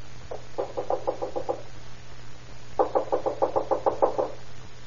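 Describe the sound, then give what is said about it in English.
Two bursts of rapid knocking on a wooden house door, about eight raps each with a short pause between, clear over a low steady hum, with no voices. “I knocked when I was up here before, but there wasn't anybody home.”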